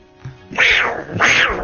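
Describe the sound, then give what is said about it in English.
Two loud, harsh snarls from a big wild cat, each a rising-then-falling growling burst, with a short pause between them. “Cat. This pussy's crazy.”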